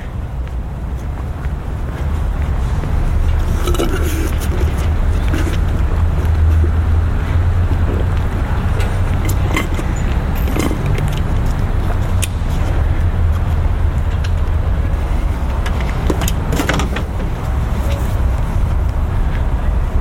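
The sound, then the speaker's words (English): A loud, steady low rumble of bus engines and passing road traffic while walking by the buses, with wind buffeting the microphone and a few brief clanks and hisses on top. “And yeah, so we're walking by the buses now.”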